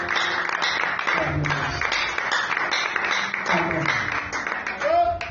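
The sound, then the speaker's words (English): A church audience claps their hands together in a dense, continuous patter for several seconds during a sermon, with voices murmuring and calling out underneath the steady, fairly loud clapping. “So you don't have to let me tell you to clap your hands. Clap your hands. Clap your hands.”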